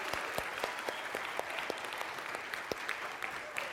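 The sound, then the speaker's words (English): A crowd at a Vacation Bible School gathering claps for the program's directors, a dense patter of many hands with scattered sharper individual claps standing out, sustained at an even level throughout with no voices over it. “Let's give them a round of applause.”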